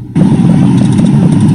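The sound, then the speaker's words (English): Steady, low engine rumble from cars idling in a queue for a food distribution at Fair Park in Dallas, a continuous loud drone that starts abruptly and holds without pause, with no talking. “As the cars formed a well-organized queue.”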